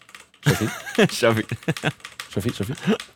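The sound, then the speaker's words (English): Rapid clacking of a computer keyboard being typed on in quick bursts, fairly loud, mixed with voices talking and laughing over it. “It just sounds like he's playing StarCraft.”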